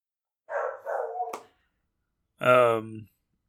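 A dog barks a few times in quick succession, then pauses before a final longer, more tonal bark. The barks are moderately loud, with nothing else in between.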